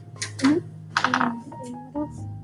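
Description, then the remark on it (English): Dice rattle and tumble across a hard tabletop in two quick bursts of clicking clatter, with faint background voices murmuring underneath. “Roll your dice.”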